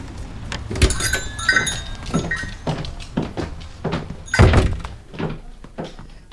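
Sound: knocking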